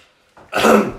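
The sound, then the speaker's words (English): A person imitates a single muffled cough, a short throaty burst that swells loudly and then fades, with no talking around it. “But then, and I had to cough as well, so I was like...”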